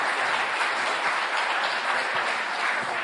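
A crowd claps steadily, a dense, even wash of many hands with no pauses for the full few seconds and no voices standing out.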